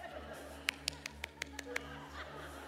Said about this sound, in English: A couple of golf claps in the room?